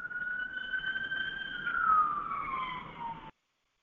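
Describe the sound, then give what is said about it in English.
A siren wails outdoors with a steady tone that slowly bends downward in pitch as the vehicle passes, loud, over a rough background rumble, with no talking. “Sorry about that. I wanted to mute out these sirens.”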